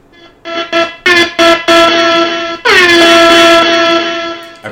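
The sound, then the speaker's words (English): A soundboard air horn effect played from a phone blares in a rapid series of short bursts, then holds one long, loud, brassy tone that dips slightly in pitch before cutting off. No one speaks over it. “I forgot it was on my phone. Your soundboard? My soundboard.”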